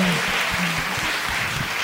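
A theater audience applauds steadily for a performer, a dense wash of clapping that stays loud and even for the whole couple of seconds with no voices over it.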